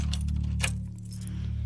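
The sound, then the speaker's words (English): A set of keys is grabbed to unlock a display case in a store, jangling in a short burst of bright metallic clinks, settling after a moment, with a steady low hum running underneath and no one speaking. “she concedes as she grabs a set of keys to unlock the display case.”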